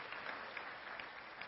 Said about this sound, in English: Amen. Amen. Can you give them a round of applause and encouragement as they go this week? Thank you, guys.